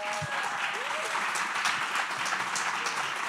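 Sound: audience applause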